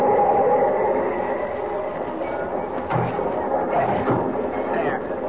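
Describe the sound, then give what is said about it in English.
A train rolls into a station with a steady, heavy rumble and a metallic hum, broken by a couple of sharp clanks from the cars partway through. “There's the train. Just pulling into a station.”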